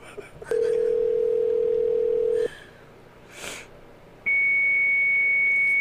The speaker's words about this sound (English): Fax machine. Why is the that coming on? Fax machine comes on. Why? Because she probably kept the phone off the hook.